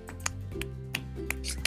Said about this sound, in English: Golf clap. Golf clap.